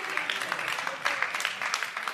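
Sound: a few people clapping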